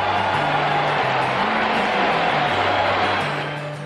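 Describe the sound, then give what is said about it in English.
A big crowd at the Belmont Stakes horse race roars and cheers in a dense, sustained wall of noise, loud throughout, with a low droning tone underneath, easing off slightly at the end, as the leading horse widens its lead. “Listen to the crowd.”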